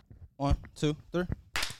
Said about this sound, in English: Let me get a quick clap.